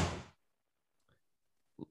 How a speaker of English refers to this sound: I don't know if you can hear that, but Luke is opening and just closing the door repeatedly. That's all he's fucking doing.